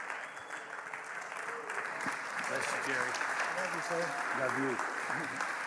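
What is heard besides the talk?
audience applauding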